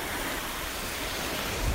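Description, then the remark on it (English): Steady wash of sea surf rolling onto the beach at Sheringham in North Norfolk, a broad continuous hiss with a low rumble swelling near the end, with a bit of wind in the background and no voices. “down at the water, bright beach huts face out to sea, where fishermen bring in crates of wriggling crab and other catches.”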